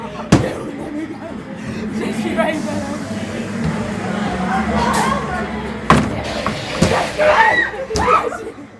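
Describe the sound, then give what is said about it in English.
Someone is having a shower in a steam room: water sprays steadily, a continuous hiss broken by a few sharp knocks or thuds, with indistinct voices murmuring in the background. “Having a shower.”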